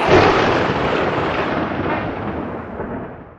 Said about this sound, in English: Was that thunder?